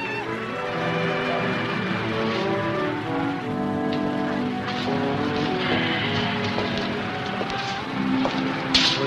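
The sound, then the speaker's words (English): Steady rain patters on a hard surface throughout, a continuous hiss and spatter mixed with sustained tonal sounds, even in loudness, with no one speaking. “it stopped raining.”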